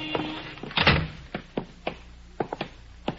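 The door of a settlement house building opens with a rattling thump and then closes, followed by a series of sharp, evenly spaced knocks and clicks, moderately loud, with no talking.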